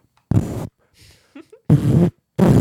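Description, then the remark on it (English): A voice imitates a snare drum with three loud, buzzy, noise-filled bursts, each under half a second, separated by brief pauses holding faint breathy mouth sounds. “Can you give me a snare sound?”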